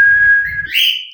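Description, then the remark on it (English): A pet bird whistles one long, steady, clear note that slides upward into a higher, brighter tone at the end. It sounds fairly loud over a faint low rumble. “Uh-oh, bird. Bird hears you.”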